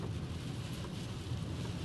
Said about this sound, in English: All right, well, you can hear the rain. It's like hard for me to see.